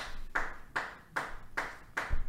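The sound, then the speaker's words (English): A person claps five times in a steady, even rhythm over being in first place in the picks by one game, each sharp clap ringing briefly before the next. No one speaks over the clapping. “What in the hell are you over there clapping about?”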